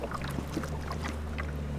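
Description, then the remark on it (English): A motorized pump drones steadily with a low hum while a broad, continuous hiss of spray runs alongside it, as fire retardant, similar to what firefighters drop from the sky, is sprayed onto a house in a neighborhood northeast of Los Angeles without pause. “Spraying fire retardant in a picturesque neighborhood northeast of Los Angeles.”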